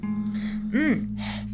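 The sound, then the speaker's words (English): Breathy panting, a few quick airy huffs in a row with a brief vocal gasp in the middle, over a steady low background hum, with no talking. “I can hear you panting.”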